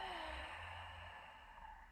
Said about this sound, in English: Now before we start, let's take one complete grounding breath, breathing in through both nostrils, and exhale.